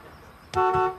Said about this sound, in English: You don't have to honk because it'll move.